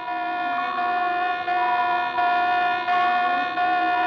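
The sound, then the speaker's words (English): A naval general quarters alarm blares: a loud, steady, buzzing tone rich in harmonics, held without a break for about four seconds, with a slight pulsing in its strength and no voices. “Sound general quarters.”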